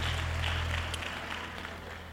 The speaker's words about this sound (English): Clap those hands as you take your seats.